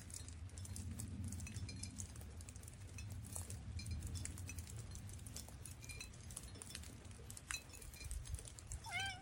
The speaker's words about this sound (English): Listen to the drips hitting those bottles.